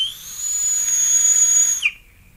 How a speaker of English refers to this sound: You hear how it starts and ends with a whistle?